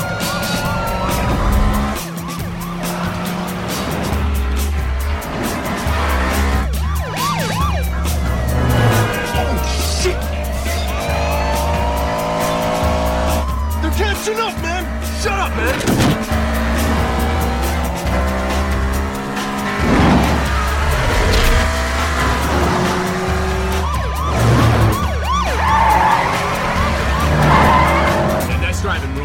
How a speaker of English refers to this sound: In this minute, Brian and Enrique, Roman and Roberto continue to race down I-95, weaving in and out of traffic and eluding cops as tensions flare.